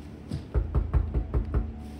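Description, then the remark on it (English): Knocking on a glass office door: about six dull, evenly spaced raps in a quick steady rhythm, fairly loud and low-pitched, with no voices. “However, someone knocked on his office door.”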